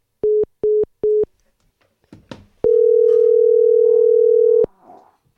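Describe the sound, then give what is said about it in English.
Three quick electronic beeps, a brief clatter like a handset being picked up, then a loud, steady telephone dial tone droning for about two seconds before cutting off. No one speaks. “Oh, your phone. Second time in a row.”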